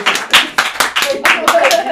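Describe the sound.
A small group claps for a person for Black History Month in quick, uneven bursts for a couple of seconds, loud and sharp, with some faint voices or cheering mixed in underneath.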